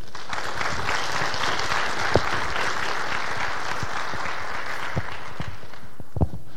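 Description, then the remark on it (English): Steady audience applause welcoming a speaker fills the whole stretch, a dense crackle of many hands clapping at an even level, with a few sharper individual claps popping out near the end. “We'll see if you applaud later.”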